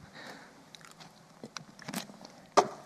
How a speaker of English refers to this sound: After my sip.